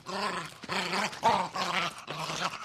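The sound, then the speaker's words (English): A robotic dog, Chomps (Canine Home Protection System), growls in a series of about five loud, rumbling bursts separated by brief gaps, with no talking. “It's a robotic dog.”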